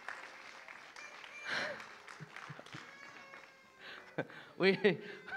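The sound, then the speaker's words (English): A crowd in a room at a church gathering cheers and claps for several seconds, a steady patter of applause mixed with whoops and raised voices, swelling louder toward the end. “Just give everybody a wee cheer this morning.”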